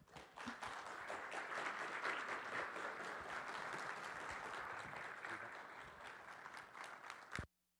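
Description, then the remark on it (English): Sustained audience applause, a dense wash of many hands clapping steadily for several seconds at a fairly loud, even level before stopping abruptly. “Yeah, you can clap all over again.”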